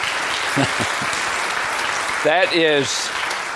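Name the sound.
audience applause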